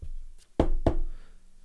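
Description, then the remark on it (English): Two sharp knocks on a wooden surface in quick succession, loud and hollow-sounding, with a faint light tap just before them and a brief resonant ring after. “Everyone's healthy, knock on wood.”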